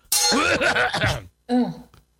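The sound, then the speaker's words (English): A person coughs and clears their throat: a long, raspy, voiced stretch of hacking, then a brief pause and one shorter throat-clearing burst. “I'll use this opportunity to cough.”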